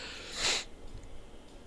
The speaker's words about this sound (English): Oh, sorry, that was a big yawn. It's been a long day.